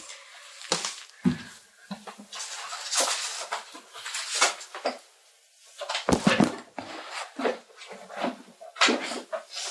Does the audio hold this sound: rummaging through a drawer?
yes